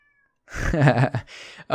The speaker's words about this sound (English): There's a cat meowing. I don't know which one is it.